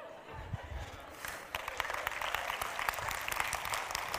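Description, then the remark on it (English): A crowd breaks into applause, many hands clapping in a dense, sustained wash that swells after the first second and stays steady and fairly loud to the end. “You don't need to applaud.”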